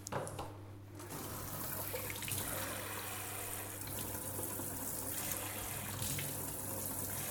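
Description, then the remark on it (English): Water gushes steadily from a kitchen tap as hot and cold water are run to get lukewarm, body-temperature water for a yeast recipe; a continuous hissing splash that starts after a brief quiet moment and keeps flowing evenly to the end, with no talking. “So so I'm going to put some hot water and I'm going to put some cold water.”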